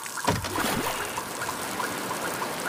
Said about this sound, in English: It was coming out of everywhere. I tried to clean it up with whatever we had in the office, but it was so much water.